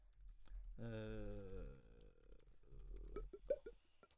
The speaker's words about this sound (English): why are you typing? I'm typing to search on Google.